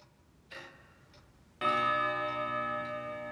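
A clock ticks softly a couple of times, then strikes once with a single loud, resonant chime that rings on and sustains to the end.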